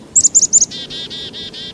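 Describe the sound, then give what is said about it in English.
A bird sings: three quick, bright high-pitched double chirps, then a buzzy, rapidly pulsing trill that runs on steadily to the end, with no voices. “So there's the song, and there's a drum that certain birds make, but there's also chip notes.”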